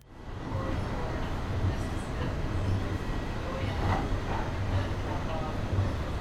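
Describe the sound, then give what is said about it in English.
A train rolls steadily along the rails, a constant rumble with faint rhythmic thumps from the wheels recurring throughout, and no clear talking over it. “You know, I just need to get off this train.”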